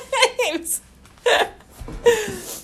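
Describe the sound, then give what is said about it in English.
Two loud sneezes, each an abrupt burst with a voiced, breathy tail, separated by a short pause with a few quiet sounds between them. “Gesundheit. Gesundheit zwei.”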